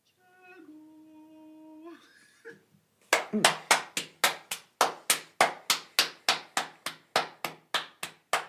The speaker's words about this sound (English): Sorry, I genuinely felt the need to give that a round of applause. It was truly a sight to behold.